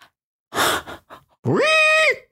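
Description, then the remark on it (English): A person imitates a donkey's bray: a harsh, breathy rasp, a couple of short huffs, then a loud voiced note that swoops upward and holds steady before cutting off. “Is that a donkey? Are those all supposed to be donkeys? Yeah.”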